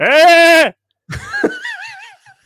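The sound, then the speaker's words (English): A person mimics a sheep with a loud, quavering bleat, then after a short pause gives a second, warbling bleat that wavers up and down before trailing off. “I know I can speak sheep, and the reason I know this is because you don't say ba, right?”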